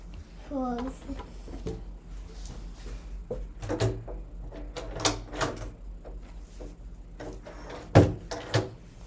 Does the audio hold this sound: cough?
no